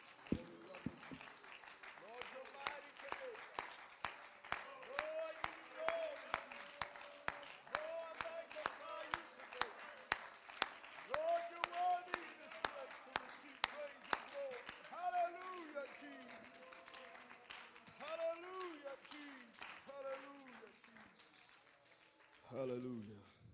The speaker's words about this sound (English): Hallelujah. Well, clap your hands to the Lord tonight. Let's worship Him.